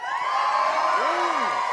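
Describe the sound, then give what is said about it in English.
A crowd cheers loudly and continuously, a dense wash of voices with a few rising and falling whoops and shouts standing out above the roar, a big cheer for anyone not from Dublin. “Can we have a big cheer for anyone not from Dublin?”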